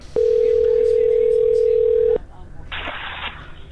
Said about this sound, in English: I really love hanging up the phone.